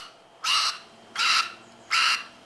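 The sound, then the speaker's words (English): A beluga whale gives three harsh, raspy squawks from its blowhole, mouth under water and head vibrating, in an even rhythm, each about a third of a second long, fairly loud with quiet gaps between them. “Call that one a squawk. See how it's coming out of his bowl hole?”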